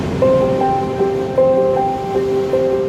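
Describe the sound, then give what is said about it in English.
Ocean waves wash steadily onto a beach in a continuous rush of surf, while a simple melody of sustained tones plays over the water noise. “What drew you to the Presidio? Baker Beach.”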